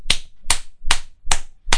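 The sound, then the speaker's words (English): Five sharp hand claps land at a steady, even pace, each one a crisp, bright smack with a short tail, like a single person clapping alone with no voices. “Just want a just quick round of applause and that.”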